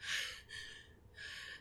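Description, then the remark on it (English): Three ragged, breathy gasps from a woman violently thrown back onto her back, gasping for air, each drawn in sharply then trailing off, with a short pause before the last; fairly quiet, with no talking. “you see Citara get violently thrown back on her back, gasping for air”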